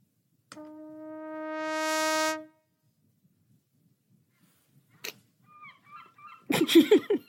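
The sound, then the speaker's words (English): A seagull squawks several times in harsh, raucous bursts near the end, following a long, steadily swelling brass-like tone and a few seconds of near silence. “I presume it's not the seagull.”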